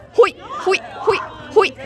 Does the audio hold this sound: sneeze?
no